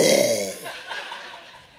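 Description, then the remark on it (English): A single big, drawn-out burp after finishing eating, loud, with a deep croaking rumble that trails off over about a second. No talking around it. “And I get done and it's a big old burp.”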